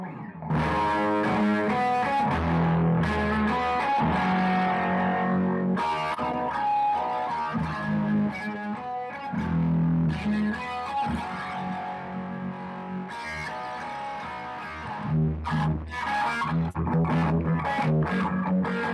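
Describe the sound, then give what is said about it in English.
A distorted electric guitar plays a sustained, effects-laden lick, with dense harmonic chords and bright sustained notes ringing out loudly and continuously, with no voices. “you have my permission anytime you want to play that unbelievable Spirit soundtrack opening lick of”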